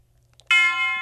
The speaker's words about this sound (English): And big tubular bell.